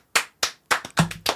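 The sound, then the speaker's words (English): Slow, sharp hand claps given as a hand for the hosts, about six of them, starting evenly spaced and then bunching closer together toward the end, with no talking over them. “Are we doing slow clapping?”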